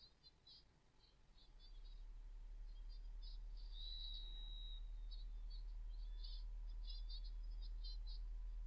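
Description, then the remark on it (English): An owl calls amid jungle night sounds: repeated high, chirping trills and one sustained whistling note, fairly faint over a steady low hum, with no one talking. “we're in the fucking jungle. Deal with it. It's an owl.”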